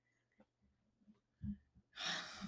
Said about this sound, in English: You're breathing heavy because it's hot. It is very hot in here, literally. It's getting hot in here.